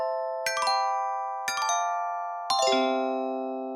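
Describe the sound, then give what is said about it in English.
A transition chime of three bright, bell-like tones struck about a second apart, each ringing out and slowly decaying, the final note lower and lingering longest. No voices. “I think we'd better put in a chime just for propriety, you know, doing things properly.”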